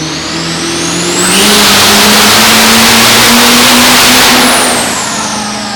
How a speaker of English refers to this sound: And, man, I'll tell you what, from standing outside of the truck 15, 20 feet away, it was a violent sounding. This is what it sounded like.